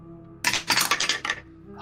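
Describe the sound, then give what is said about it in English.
Dice rolled for an acrobatics check in a tabletop role-playing game clatter across a hard tabletop in a quick burst of bright, rattling clicks and bounces lasting about a second, fairly loud, before settling into quiet. “Yeah, those dice ASMR sound so good.”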